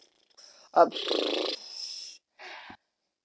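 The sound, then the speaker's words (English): A puppy behind a laptop makes a few short noises: a sharp yip, then a longer grumbling, purring-like rumble, followed by a softer snuffling burst, with quiet pauses between. “My puppy is behind the laptop.”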